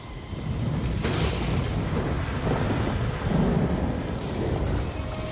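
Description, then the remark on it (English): A loud thunder crack from a lightning strike splits the air, followed by heavy, continuous rumbling that rolls on for several seconds, with a second sharp burst near the end; no voices. “Toad when it's struck by lightning.”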